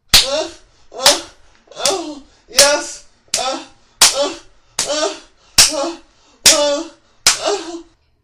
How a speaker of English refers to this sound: He moaned with each blow. Even in his entranced state, the act of this gorgeous blonde slapping him on the ass excited him, and each slap made his cock grow stiffer and stiffer.